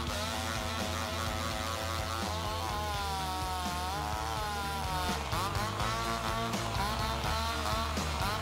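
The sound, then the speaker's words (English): A chainsaw solo in a song: a loud, buzzing, revving drone that bends and wavers in pitch, played continuously over a dense, steady band backing with no voices. “He solos with a chainsaw.”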